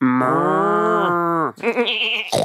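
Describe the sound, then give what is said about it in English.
A person imitates pig noises up close: one long, loud, drawn-out nasal call, followed by a few shorter, higher squealing bursts, with no other sounds around it. “Okay, pigs don't really do that. Yes, they do. That's exactly what they sound like.”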